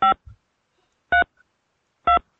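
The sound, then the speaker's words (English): Three short, loud phone keypad tones, each a clean dual-pitched beep, pressed about a second apart. The caller is entering the zip code of the homeless shelter they are calling from, in answer to an automated tip-line prompt. Faint clicks sound between the tones. “Providing the zip code of the homeless shelter I'm calling from.”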